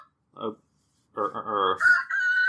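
A rooster crow used as a timer: a short clucking note, a brief pause, then a long, loud cock-a-doodle-doo that climbs in pitch and ends in a strained, high drawn-out call.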